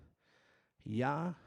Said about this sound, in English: a lot of people understood that this YHWH, if you kind of put your hand on your chest and say YHWH or Yahweh, you're going to breathe in and out.